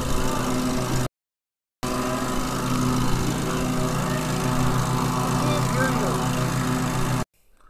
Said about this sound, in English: I had to shut off the recording because the tractor, it was getting a little too loud. I'm like, man, this tractor is too loud for this mic.